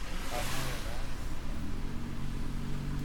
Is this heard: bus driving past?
yes